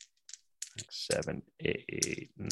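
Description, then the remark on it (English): Dice clatter and rattle across a hard surface in quick bursts of sharp clicks, with a muffled voice murmuring in between. “He has gonna spend so long rolling these dice.”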